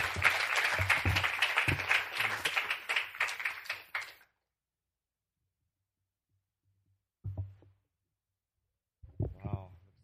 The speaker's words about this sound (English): As he comes, let's give him a round of applause to encourage him as he shares with us.